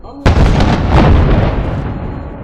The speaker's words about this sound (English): This is Dubai's Ramadan cannon. It's fired at sunset every night during this holy month to announce the end of the day's fast.